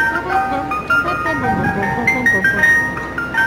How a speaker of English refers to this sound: There you go. Ice cream truck. Very nice.